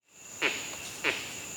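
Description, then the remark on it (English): A male monkey's 'keck' alarm call, given on seeing a leopard, rings out twice, two short sharp barks about half a second apart, over a constant high buzz of insects in the background. “And that's when we were able to record the keck. Here it is.”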